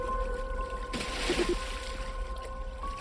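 A sudden splash as a fish bursts out of the water beside a boat, a short rush of spray over a steady low boat hum, then calm water again.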